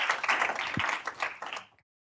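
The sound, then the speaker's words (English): A burst of audience applause for the presenters at the end of a session, dense overlapping hand claps that carry steadily for under two seconds before cutting off abruptly. “Give them a big round of applause, and we'll see you at later sessions.”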